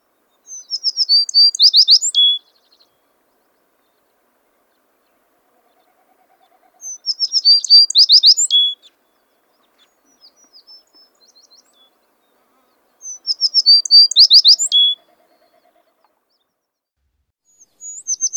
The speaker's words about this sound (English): Males can occasionally be heard singing in the late winter before migration, so let's listen to their song. It is described as a high, sweet whistling notes, generally downslurred and slightly buzzy at the end.